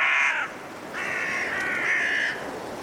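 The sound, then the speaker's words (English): Harsh, raspy caws from five carrion crows in a cold woodland at dusk in Woodchester Park, Gloucestershire, England, sound in two drawn-out bursts, a short one then a longer one, carried over a steady rush of blustery wind with no voices. “Five carrion crows calling through the blustery winds in Woodchester Park in Gloucestershire, England.”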